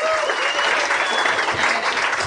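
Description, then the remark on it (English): A show audience claps loudly and steadily in applause for Spencer, a dense wash of many hands applauding without pause for the whole stretch, with a few faint whoops mixed in. “We should pause our campaign there and give Spencer his due in applause for him.”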